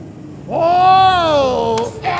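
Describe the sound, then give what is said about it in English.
A bus brakes hard to a sudden stop, letting out a loud, drawn-out squeal that rises, holds, then slowly sags for over a second before cutting off into a couple of short, noisy bursts. “The sudden stop sends Charlie tumbling head over heels off the bus and crashing to the ground below.”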